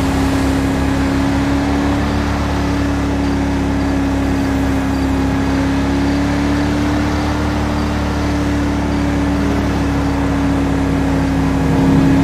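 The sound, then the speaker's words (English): A heavy 5-ton military truck engine roars steadily at high revs, a loud, continuous drone with a constant whine as the truck is driven fast like a sports car, with no voices. “Driving like a sports car driver in 5M is awesome.”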